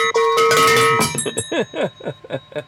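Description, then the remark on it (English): A handheld bell is rung loudly and rapidly for about a second. Its bright metallic tone keeps ringing and slowly fades while voices carry on over the decay. “I wonder if there's people listening while turning down their stereos in their cars at the beginning of this when we ring the bell.”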